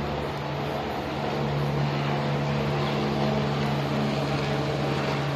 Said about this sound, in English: Again, that is the same helicopter that is flying directly over my head. It's POC in Los Angeles County. It's 10:18 a.m. That is another helicopter. I'm at the same location.